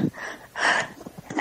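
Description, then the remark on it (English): A single sneeze: a soft inward breath, then a sharp, hissy burst lasting a fraction of a second, followed by quieter breathy sounds and a brief rustle at the end. “Bless you.”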